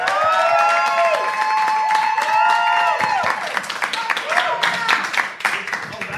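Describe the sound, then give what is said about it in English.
A loud burst of live audience applause and cheering at the Melbourne International Comedy Festival: sustained whoops and whistling shouts with sliding pitch at first, then dense, rapid clapping that takes over as the cheers fade. “Wow, that's a smattering of applause.”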